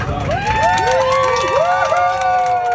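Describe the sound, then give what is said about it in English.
A crowd of passengers on a Southwest flight cheers and whoops together inside the airplane cabin after the mask mandate is dropped, many voices rising and falling in overlapping shouts over a steady low rumble. “First of all, why are people cheering like that?”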